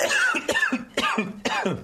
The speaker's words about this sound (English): You're coughing when I eat the lemon. It breaks you that much.